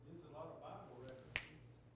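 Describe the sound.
A single crisp finger snap cracks out sharply, preceded by a fainter click, over a low background murmur of voices.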